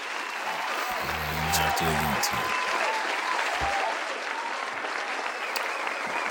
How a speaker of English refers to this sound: Give it up. Where's my applause? There it is.